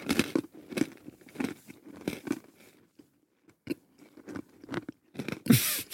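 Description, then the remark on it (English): Slightly dry, crunchy cookies of the kind usually eaten with coffee or liqueur after dinner, chewed in a steady series of loud, crisp bites and crunches, with a brief quiet gap midway and a louder crinkling burst at the end. “These are tasty, a little bit dry.”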